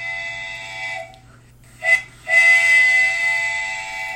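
A steam train whistle sounds two loud, sustained blasts, the first about a second long, then a short hissing puff of steam, followed by a longer second blast.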